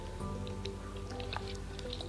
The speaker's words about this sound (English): Let me drink water.